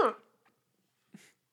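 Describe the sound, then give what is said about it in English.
A sharp cough bursts out and quickly fades, followed about a second later by a softer, breathy second burst, with no talking. “That was the gayest cough I've ever seen.”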